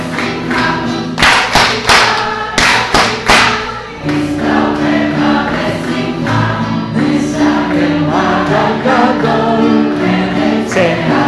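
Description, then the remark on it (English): An audience clapping along to a short song as directed by a lecturer: loud, rhythmic bursts of group clapping ring out over the lively song for the first few seconds, then the music carries on steadily with sustained tones and fainter beats. “However, there is the song calls for clapping. So I will tell you where to clap.”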